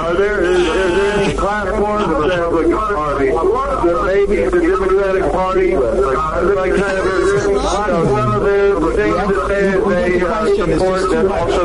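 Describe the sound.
Talk over a phone line is doubled by a delayed echo of the same voice from a television in the background, so the overlapping speech sounds smeared and hollow throughout.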